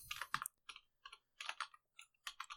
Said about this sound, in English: Hey, let's look it up right now. Everyone in podcast land loves to Google. Crunchyroll. I'm typing gladly so you know it's working. Store.